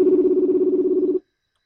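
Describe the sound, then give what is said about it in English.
A steady electronic ringback tone from an outgoing phone call, one continuous buzzy burst lasting just over a second before cutting off abruptly into silence. Clear, with no voices. “I don't know where it's ringing, so maybe I have to call him.”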